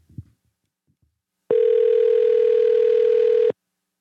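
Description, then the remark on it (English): A single two-second burst of a steady phone ringback tone, loud and clear through a handset line, while calling back a Boston area code number, preceded by a few faint soft thumps and otherwise silent. “Now, I hear the ringing, so we know it's working.”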